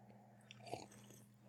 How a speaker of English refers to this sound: We're both sipping coffees because we're fancy lads. Yeah, we're both sipping coffee at 7:30 at night because we're, I don't know, in our mid-30s and that's life.